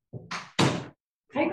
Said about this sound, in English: He's closed her face right up in the door.